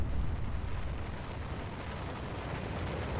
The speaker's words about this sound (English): They have, like, rocket launchers that they can fire from somewhere safe. Or, if necessary, they'll use a helicopter and drop the explosives from that. And that'll trigger the avalanche. Boom! Off it goes.